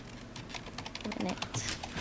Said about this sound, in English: Yeah, no, I'm just typing it in.